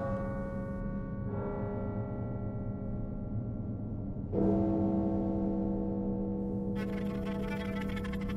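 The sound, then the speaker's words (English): A midnight bell tolls softly in the distance, its deep, low, humming resonance ringing on steadily, with a fresh, slightly louder strike about halfway through. No one speaks. “Simply seek us out where the street is crooked and empty, where the air is coldest and the shadows deepest, and where, just softly in the distance, you can hear the tolling of the midnight bell.”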